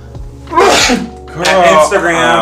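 A loud sneeze: a sharp breathy burst, then a second noisy, voiced outburst about a second later, with no words spoken.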